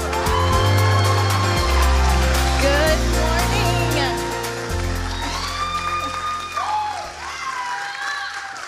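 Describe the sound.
An audience claps and cheers steadily to welcome a speaker, over sustained keyboard music with deep bass notes, then the applause thins as a single voice begins speaking.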